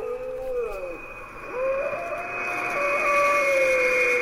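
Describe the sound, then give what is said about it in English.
A wolf howls at the start of a song in long, wavering tones that slide down and then rise again, layered over a steady high-pitched drone, with no voices present. “even starts off with that same wolf sound.”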